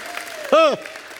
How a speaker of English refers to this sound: Somebody give God a hand clap and a shout of praise.